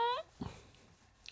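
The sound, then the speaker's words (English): A small dog named Cora whines briefly in a high, nasal tone, followed by a soft low grunt and another quick yelp at the end, all fairly quiet. “Those are good dog sounds.”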